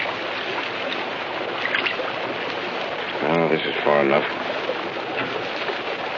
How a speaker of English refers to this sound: By Allah, if that cross passage were a little wider, it might be termed a subterranean river.